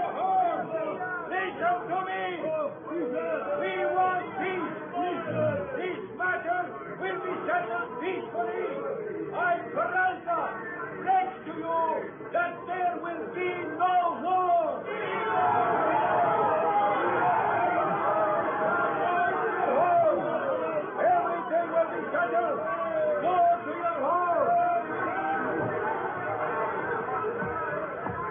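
An angry, shouting mob below a flag-draped balcony, where Colonel Peralta is trying to quiet them: a dense crowd of many overlapping voices clamors continuously, a loud agitated babble that swells louder and more intense about halfway through, with no single voice standing out.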